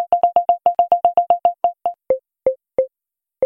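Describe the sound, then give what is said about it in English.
A phone's people-detection tone, sensing where people are as they cross the listener's path: a rapid, evenly spaced run of short electronic beeps that slows and drops slightly in pitch, ending in a few widely spaced blips. Clear, no talking. “If you're not wearing earbuds, the volume indicates that the person is centered in front of you.”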